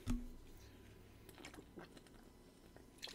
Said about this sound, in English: Really thirsty today, sorry, I keep pausing for sips.